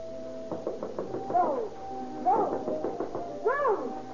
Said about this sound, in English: For every few moments, one of the sailors bangs upon the door and invites her to join the party. About 10:30 in the evening, there is another knock on the door.